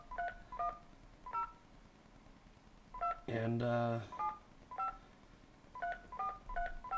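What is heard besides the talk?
landline telephone dialing tones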